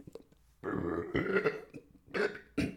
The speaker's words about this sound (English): Pardon me, folks, you know. Coffee burps.